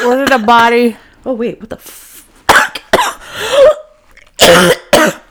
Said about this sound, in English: Oh, man. Bless you. Sorry. Or whatever you say when you're coughing.